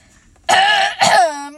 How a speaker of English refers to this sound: While he was looking, Eeyore coughed in an impressive way and began to speak.